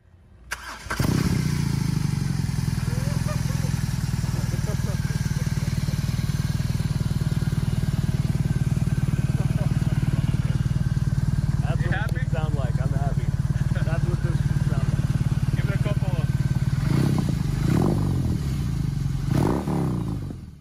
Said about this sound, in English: I always love those clips where there's quite a lot of white noise in the background. You've got to really like think, not listen to the voices. Okay, so the startup, it just sounded like a Harley.